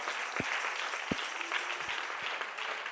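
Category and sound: crowd, audience clapping hands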